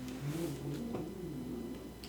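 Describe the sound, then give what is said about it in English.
A cat named Archie growls low and steadily while eating, a continuous rumbling drone that wavers slightly in pitch for about two seconds, quiet, with no talking. “Is Archie growling while he eats? Yeah, sure is.”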